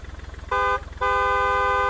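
A car pulls up outside a house, its engine idling with a low, pulsing rumble, then its horn blares twice: a short honk followed by a longer, sustained one.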